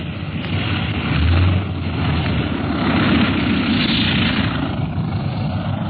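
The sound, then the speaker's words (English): A large airplane's engines roar steadily during a landing in the wind, a loud, continuous droning rumble with a broad hiss on top and a brief low swell partway through, with no voices. “Harder to land this big ship than the old pursuit planes in a wind like this.”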